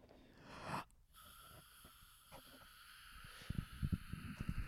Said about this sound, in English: Sorry, I was yawning.